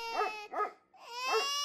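A dog barks three times in quick succession, the middle bark short and the last one drawn out into a whiny, yelping tone, close and fairly loud with no talking.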